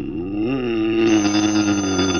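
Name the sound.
telephone ringing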